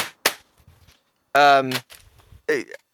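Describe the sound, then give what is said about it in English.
A single sharp, loud knock of a video game box banged on a desk rings out, followed a moment later by short bursts of voices that sound like laughing reactions. “You can bang it on the desk and we'll know it's there.”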